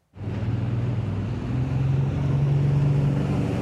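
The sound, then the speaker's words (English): A wooden motorboat cruises along, its engine holding a steady low drone under a broad rush of water and wind. The sound is continuous and fairly loud, and no one speaks. “Cruising in style is the rite of summer for the boat owners Connor Knighton has been mixing with.”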